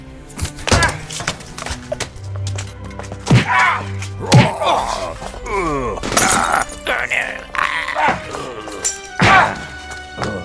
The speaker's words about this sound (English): Frightfully intense battles, epic music, punches and kicks.